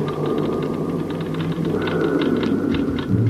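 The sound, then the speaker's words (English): A Geiger counter on a crater floor clicks rapidly and irregularly as radioactivity builds up fast, sharp crackling ticks over a steady low electrical hum and a faint higher tone, with no one speaking. “Mitch, do you hear anything besides the counter? Building up fast. Needles going like mad.”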